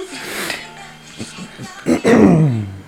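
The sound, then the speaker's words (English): Someone makes a fake fart with their mouth, a loud, buzzy raspberry lasting about half a second with a sagging pitch, following some quieter murmured vocal sounds. “Fake fart.”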